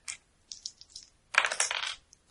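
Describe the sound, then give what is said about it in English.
Dice being rolled for a notice roll: a quick click and a few light rattles, then a louder clattering tumble lasting about half a second, ending in a couple of faint ticks. No one speaks. “Make another notice roll, please.”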